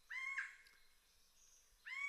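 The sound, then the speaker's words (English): A satin bowerbird gives two loud, buzzy, harmonic calls, the first drawn out and the second starting after a brief quiet gap, with no talking. “And these birds are well known for the huge variety of sounds that they make.”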